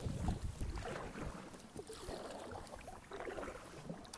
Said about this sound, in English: We're working into the water, or the wind. And it's blowing pretty stiff, but we're moving pretty good.